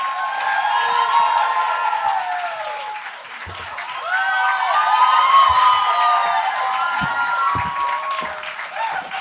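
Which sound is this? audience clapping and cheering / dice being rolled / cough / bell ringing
audience clapping and cheering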